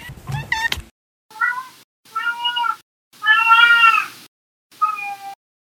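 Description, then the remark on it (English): A cat, Winston, meows four times in a row, clear, with short pauses between; the third meow is longer and more drawn out. A brief burst of other noise comes first, and no one speaks. “and sometimes my cat Winston joins me.”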